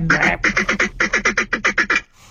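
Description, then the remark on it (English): A duck call blown in a quick rhythmic series of about eleven loud, raspy quacks, ending abruptly with a faint breathy tail and no talking. “Please duet this if you can blow a duck call better.”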